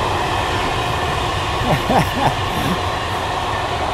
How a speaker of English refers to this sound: So this part of the forest is alongside the train tracks, and this is a big German train that heads to Rotterdam. Lots of industrial cargo. It's a little bit loud.